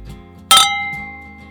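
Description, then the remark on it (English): Two beer glasses clink together once in a toast, a sharp bright strike followed by a clear ringing tone that slowly fades. Fairly loud, with no talking. “Did you like that cheers?”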